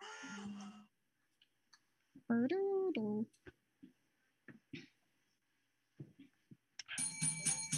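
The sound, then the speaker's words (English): A bell rings once, loud and close, its bright tone holding for about a second. Short scattered knocks and muffled voices surround it, with a dense burst of ringing noise at the end. “I have the bell. I have the bell.”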